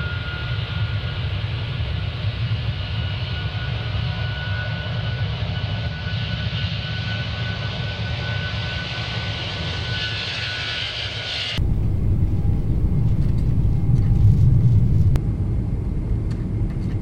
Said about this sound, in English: Engine temp ready for takeoff. Straps tight. Here we go.